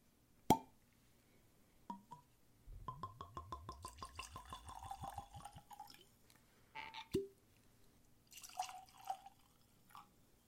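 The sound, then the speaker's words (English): Whiskey glugs from a bottle into glasses in a quick rhythmic run of gurgles, bracketed by sharp glassy clinks and a shorter second pour, with no talking. “So, let's get these poured and jump right in.”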